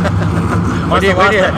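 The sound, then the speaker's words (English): A Trophy Light race truck with a loud exhaust drones past, its deep rumbling engine tone steady throughout, while a man starts talking over it partway through. “Hang on, we got a big old loud chunk going by here. Trophy light with a loud exhaust, huh?”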